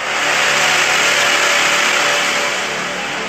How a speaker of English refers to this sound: We're now inside the casino, and that is the wind whistling through the building. Do you hear how loud that is? How eerie is that? That is what a Category 4 eye wall sounds like inside a building.